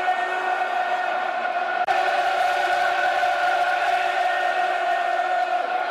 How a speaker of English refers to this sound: It's a good, open, full-blooded London derby, dear listeners. Crowd are enjoying it.